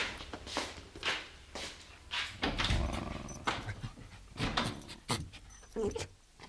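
A small dog yaps over and over in quick, irregular bursts, loud, with whiny whimpering sounds mixed in between the barks.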